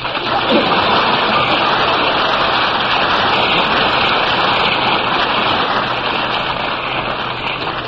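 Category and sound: crowd, audience applause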